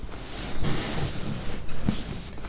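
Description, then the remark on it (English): A chair creaks a few times, low groaning squeaks as someone shifts their weight, with soft rustling in between and no one talking. “finding a way to get this chair to be less creaky.”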